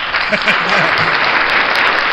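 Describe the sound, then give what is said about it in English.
An applause sound effect: a steady wash of many hands clapping in a dense, even roar that holds the same loudness throughout, with a faint voice murmuring underneath. “That definitely deserves applause.”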